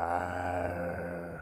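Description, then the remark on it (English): A person imitates angry bears trapped in a deep pit, growling and scratching as they try to get out, with a sustained, low, rumbling growl, harmonic and strained, holding steady for over a second before cutting off. No words are spoken. “And they were growling and scratching, trying to get out of the hole.”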